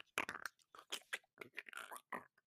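Dense, irregular crunching and crackling in quick bursts as bugs that dropped from the ceiling are crushed under a boot with each step, with short gaps between the crunches, no voices.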